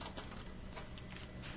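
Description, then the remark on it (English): Faint, uneven creaks, like old floorboards or timber straining, come in a few irregular bursts from a passage outside at nearly 2 o'clock in the morning, over a soft background hiss, with no voices. “There was a creaking in the passage outside.”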